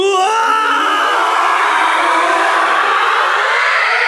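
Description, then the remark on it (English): A brief pitched scream quickly smears into a loud, swirling time-warp sound effect, made using a delay with its feedback turned up to infinite, a dense warbling wash that holds steady for about four seconds with no talking. “which turns into this crazy time warp effect thing.”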